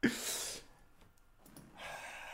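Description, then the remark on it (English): A sneeze bursts out with a sharp start and a hissing, breathy spray, followed after a short pause by a second, softer noisy blast of breath. “Bless you.”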